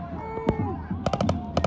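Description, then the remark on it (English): Sharp cracks of gunfire, one lone shot followed by two quick volleys of three or four rapid pops, ringing out over a noisy crowd-like background with faint voices. “That sounds like gunfire, but I think it's probably non-lethal rounds, maybe.”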